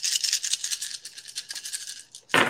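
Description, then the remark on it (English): A handful of dice, dropped while rolling to hit in a game, clatters and rattles in a rapid, bright stream of overlapping clicks that slowly thins out, then ends in a sudden louder burst of noise. “A lot of dice. I just dropped.”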